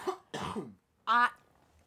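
A sick man coughs twice in quick succession, harsh and breathy, then after a short pause gives a louder, voiced throat-clearing grunt. Fairly loud, with no talking.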